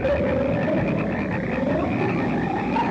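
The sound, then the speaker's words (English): A dense chorus of frogs croaking continuously, many overlapping calls forming a steady, loud wall of sound with no talking, as frogs hop all over a man who has fallen on the ground in a movie scene. “Frogs are hopping all over him.”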